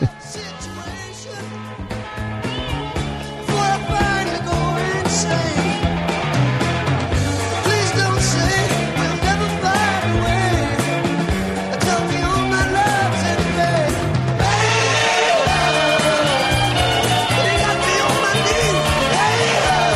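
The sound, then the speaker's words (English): A loud rock recording plays throughout, with driving electric guitars over a moving bass line and drums, growing brighter and fuller in its second half; no one talks over it. “Okay, I'm gonna play a little of both.”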